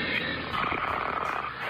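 person snoring

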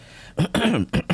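throat clearing

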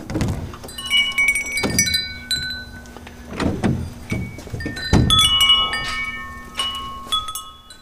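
wind chime ringing

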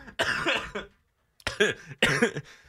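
cough

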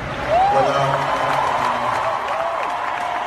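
audience applause

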